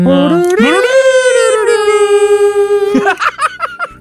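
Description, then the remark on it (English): A voice imitates the warp flute tune, swooping upward into one long sustained note, then breaking off into a few short, choppy bursts like laughter, fairly loud. “Can anybody do, like, the warp flute thing?”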